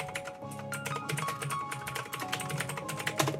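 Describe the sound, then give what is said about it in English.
Rapid, forceful typing on a computer keyboard, a dense stream of sharp key clacks with no pauses, steady throughout, with no voices. “We could just hear you attacking your keyboard there like crazy.”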